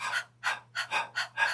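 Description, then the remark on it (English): A person imitates a dog's panting as a breathing exercise: five or six quick, breathy huffs in a steady rapid rhythm, airy and hissy, over a faint low hum, with no talking. “I want you to pant like a dog.”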